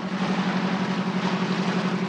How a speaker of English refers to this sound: And then, of course, there's the amphibious star of the show. Fans, you know the engine sound.